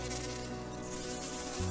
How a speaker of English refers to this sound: You hear the flies buzzing in the dining room.